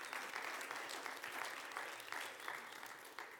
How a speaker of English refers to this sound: But if you came and enjoyed the breakfast, would you just give them another hand clap this morning?